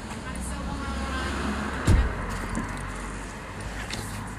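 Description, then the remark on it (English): Steady low road rumble of two cars moving along a road, with a brief thump partway through and faint muffled voices in the background. “There's two cars coming, let these cars go.”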